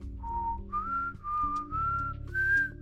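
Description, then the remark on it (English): A person whistles a short, bright tune, with clear sustained notes stepping gradually upward over a few seconds, fairly loud, with a low steady backing sound underneath. “I can't whistle at all. That was so good.”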